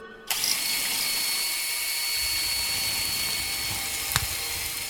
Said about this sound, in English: A blood-splattered cordless drill comes in handy